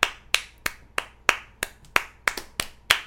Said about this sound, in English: The second clap came later.